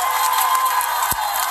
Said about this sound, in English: They're cheering.